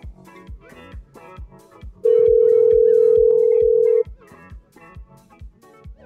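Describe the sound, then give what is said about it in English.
A single loud, steady electronic ringback tone sounds for about two seconds as an outgoing phone call rings on the line, one of several repeated calls to the same number that go to voicemail, over rhythmic background music with a thumping beat. “So it looks like it's not someone trying to reverse prank us, but I'm going to call a few more times just to be annoying.”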